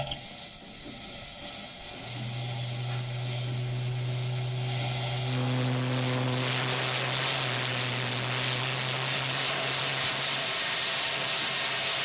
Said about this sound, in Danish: Styrmanden, han ser meget irriteret ud og trækker så kraftigt i rebet til Marthas fløjte til nærmest ingen effekt.